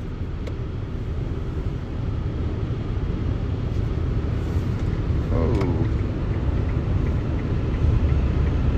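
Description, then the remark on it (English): A car driving aggressively roars past over constant loud road and engine rumble, with a brief revving whine midway through; it cut in front of another driver, brake-checked him and went around the speaker. A person briefly exclaims. “Sorry, this car is driving like a fucking madman.”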